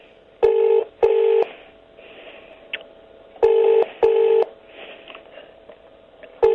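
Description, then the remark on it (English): A telephone ringing tone repeats in pairs: two short buzzing rings, a pause of about two seconds, then two more, with a third set just starting at the end. No voices. “No, the phone's ringing. I can hear it.”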